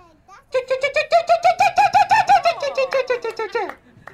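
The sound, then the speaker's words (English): A person dressed as a bird imitates an oystercatcher's call at a bird calling contest, with a rapid, loud string of shrill piping notes, about eighteen in a row, rising slightly in pitch, then tumbling lower and trailing off. “So here's my best oyster catcher impression.”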